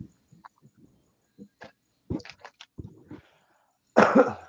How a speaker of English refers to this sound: I had to cough.